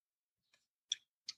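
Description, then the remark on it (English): Three crisp, quiet card snaps from shuffling a deck, spaced roughly evenly apart, with no talking; the first is faint and the next two sharper. “Tell me when you want me to stop shuffling. I've been shuffling this whole time.”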